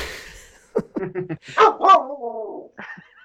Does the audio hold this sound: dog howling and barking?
yes